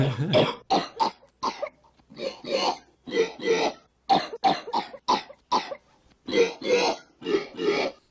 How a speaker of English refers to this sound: And then we cut back to Ferris after the phone call ends, and it's just a small shot at the very end, but Ferris is playing Johann Strauss's Blue Danube Waltz on his keyboard. Out of coughs. Out of coughs.